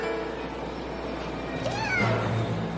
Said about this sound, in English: it's like a mutant cat, and it tears the fuck out of this guy that's trying to get it